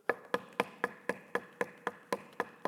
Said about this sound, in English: They begin to knock on the pews, on the chairs, on the desks. If they like what the lecture that they're receiving at that moment, they begin to hit and they knock.